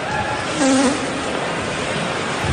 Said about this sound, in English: And they had said that that was the goalie's skates rubbing on the ice when he stopped. That's what we've heard that many times. That's what they attributed that noise to.